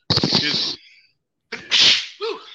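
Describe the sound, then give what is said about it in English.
A loud sneeze bursts out sharply, followed after a brief pause by a second explosive sneeze with a short vocal trail at the end. “Bless you. Thank you.”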